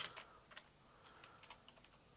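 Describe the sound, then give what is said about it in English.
Quiet, uneven tapping of keys on a computer keyboard, a quick run of soft clicks with small pauses between them, with no one speaking. “God, I need to learn how to use this keyboard properly.”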